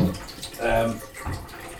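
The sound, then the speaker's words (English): Water runs steadily from a tap, a continuous splashing hiss that dips slightly partway through as someone turns the water down, with a brief murmur of voice mixed in. “So I was just turning the water down”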